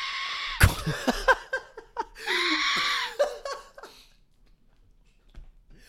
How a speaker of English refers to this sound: The Mayan, is that like a flute or is it like something they did with their mouth? It was a whistle that they created for like wartime. Hmm. Mayan death whistle.